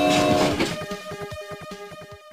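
A train horn sounds over a rumbling rush at the start, then fades into a steady clickety-clack of wheels on rails as the train passes by, all within about two seconds.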